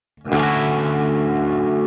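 A single strummed electric guitar chord played through a drive pedal turned down to around 11 o'clock, with a gritty, lightly distorted tone that has a little buzz, ringing out loudly and sustaining evenly. No one speaks.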